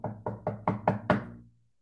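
Six sharp knocks on a wooden door in a steady, quick rhythm, each a little louder than the last, with a short resonant ring fading after the final rap. No voices.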